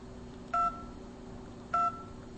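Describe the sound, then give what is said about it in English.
Two short telephone keypad tones as a weather number is dialled, each a brief dual-pitched beep, sounding about a second apart over a low steady hum, with no talking. “Three, button. button. One button. Two button.”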